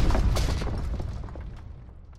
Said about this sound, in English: the ship landed with a kettle drum thud.